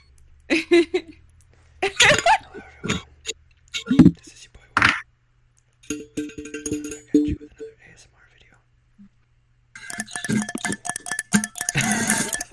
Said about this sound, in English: You guys want to hear me drink water?